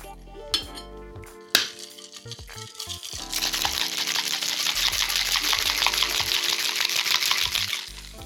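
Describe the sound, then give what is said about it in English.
Ice rattles hard inside a cocktail shaker in a fast, steady rhythm for several seconds, loud, after a few sharp clinks and taps as it gets going, as a drink with egg white and Seville orange marmalade is shaken until cold. “And then you shake that until cold, which is always fun because it makes your hands really cold.”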